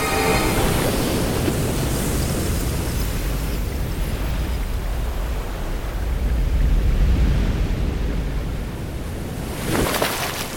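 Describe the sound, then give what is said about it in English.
A steady roar of rushing, foaming water like a waterfall, loud, with a deep rumble beneath a hissing wash that swells slightly midway and brightens near the end. “Debris crunches under the weight of itself, and star matter foams to the surface.”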